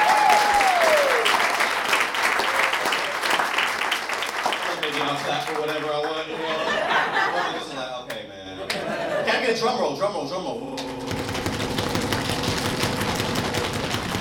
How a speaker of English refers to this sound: Can y'all clap it up for Asian people on TV one time?